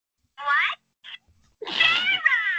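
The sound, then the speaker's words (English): A cat meows several times: a short, rising mew, a tiny chirp, then a longer, louder, slightly raspy meow that trails off. No one speaks. “Meow.”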